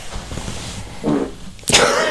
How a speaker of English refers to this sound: For those keeping up at home, that's the fourth fart.